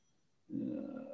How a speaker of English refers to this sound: my phone's ringing.